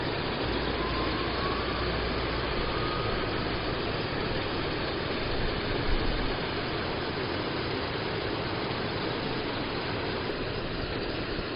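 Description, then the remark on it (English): A tractor engine rumbles along a country road by a three-arched bridge over the River Rye, on the road to Old Byland, a steady low mechanical drone that swells slightly as it passes midway, then eases off, with no voices. “To my right would take you up to Rievaulx Abbey, but for the moment I'm just sitting on a tree stump, watching the world hikers and tractors go by.”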